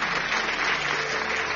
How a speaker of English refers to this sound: Give a clap of offering unto the Lord. Give a clap of offering unto the Lord.